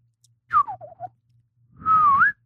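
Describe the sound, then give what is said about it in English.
Someone tries to whistle, producing a short wobbly run of falling notes, then after a pause a longer, breathy, airy tone, somewhat unsteady. “Yeah, I can, but not. Okay, I can't whistle that good.”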